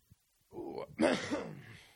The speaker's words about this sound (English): Thank you for coughing into the microphone.